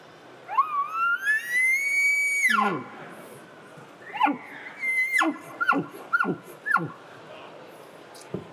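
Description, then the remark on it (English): A long rising, whistling bugle-like squeal followed by a series of short, sharp descending chirps, all made by a person blowing a latex diaphragm mouth call to imitate elk bugles and cow calls. “You can cow call soft with it, but you can also get pretty loud with it.”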